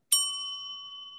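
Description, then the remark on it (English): A single bright bell ding strikes sharply, then rings on with a clear, steady tone that slowly fades. Fairly loud, with no voices or other sounds. “I'm giving you a bell.”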